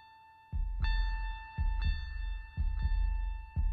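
Post-rock instrumental music plays, with sustained ringing guitar tones held over steady, deep drum thumps landing about once per second. There are no voices.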